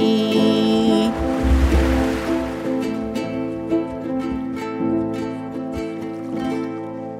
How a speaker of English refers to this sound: The tides came in and the waves got closer. Our castle got swallowed up by water.